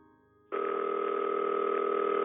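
A steady, unbroken telephone dial tone switches on after a brief quiet moment as someone makes a phone call in a hallway, and holds at an even, fairly loud level to the end, with no voices.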